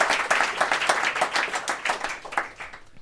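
Hands clap along in a steady, fairly quick rhythm, sharp bright smacks repeating for a few seconds and fading slightly toward the end, with no voices over them; recorded live at Pizza Express during an audience vote.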